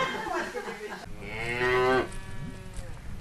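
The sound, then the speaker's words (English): A single loud, drawn-out moo from Nguni cross cattle on a family farm in the Noosa hinterland, rising and falling over about a second, with some rustling farmyard noise before it and softer lowing trailing off afterward. “So we're looking at Nguni cross cattle at the moment.”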